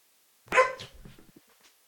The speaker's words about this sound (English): He hears a dog bark from inside.